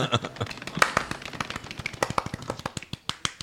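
A soft golf clap: quiet, light hand claps patter in a quick, uneven rhythm, a steady stream of sharp little taps lasting a few seconds.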